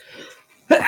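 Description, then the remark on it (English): A single sharp, explosive sneeze bursts out near the end after a brief quiet intake, loud. “Bless you. Excuse me. Bless you.”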